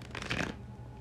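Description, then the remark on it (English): A quick riffle of tarot cards being shuffled during a tarot reading, a soft papery burst lasting about half a second before fading into a quiet, steady hum. “Just a few more shuffles and just concentrating on the cards for a second.”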